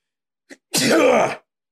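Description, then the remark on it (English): A quick sharp intake of breath, then one loud sneeze with a voiced, drawn-out finish, alone with no talking around it. “Bless you.”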